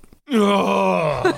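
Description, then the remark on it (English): A voice imitates the relieved moan someone makes after a suppressed sneeze: one sustained, loud, tonal groan that slowly falls in pitch, ending in a couple of short breathy bursts. “the silenced, the suppressed sneeze”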